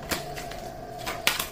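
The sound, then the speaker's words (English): A loud refrigerator runs with a steady, droning hum and a faint tonal whine, broken by a few sharp clicking taps. No one speaks. “And if you're wondering what that is my loud refrigerator.”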